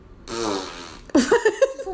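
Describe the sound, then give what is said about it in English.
Someone blows a loud, buzzy raspberry imitating a fart as a reply to a football pick between NC State and Western Carolina, about a second long, followed by a wobbling, pitched vocal sputter. “That's probably accurate, the fart noise.”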